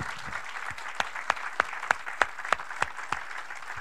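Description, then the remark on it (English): An audience applauds two guest ministers to show appreciation: a dense wash of clapping with sharper, evenly spaced claps punching through about three times a second, sustained at moderate loudness throughout. “Let's go ahead and clap for these guys.”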